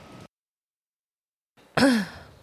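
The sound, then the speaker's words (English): A single loud cough bursts out after a stretch of near silence, sharp at the start and trailing off with a breathy, falling tone. “That cough was the perfect level of...”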